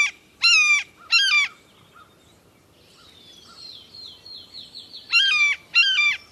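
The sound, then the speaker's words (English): A blue jay imitates a red-shouldered hawk with two pairs of loud, harsh, descending screams, separated by a few seconds of faint, thin twittering. No one speaks. “So this is a blue jay making a red-shouldered hawk noise.”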